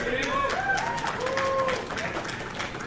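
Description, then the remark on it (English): An audience at a Turning Point USA event applauding Charlie Kirk, a dense, steady wash of many hands clapping for about three seconds, with crowd voices and gliding whoops rising and falling above it. “Everyone applaud the Zionist shell.”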